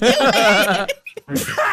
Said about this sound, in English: Bless you. That was a powerful sneeze. The whole hat came down.